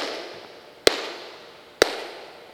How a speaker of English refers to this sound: He's showing me how the Meyer system works. I'm going to clap 3 times. You'll hear the echo that's been created by the sound system.